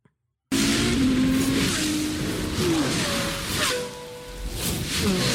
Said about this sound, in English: It's a little loud when it starts because engine noises. Cars. So just be careful with that.